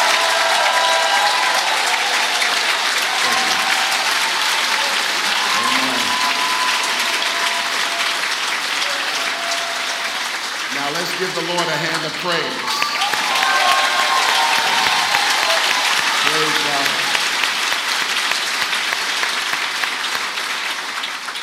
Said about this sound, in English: And so you know how we do whenever we get a guest speaker. We give him the biggest Queens Boulevard, Elmhurst, Elks Lodge applause we can.